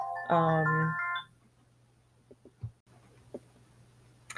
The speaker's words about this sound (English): Apologies, my phone rang. I forgot to put it on Do Not Disturb or silence.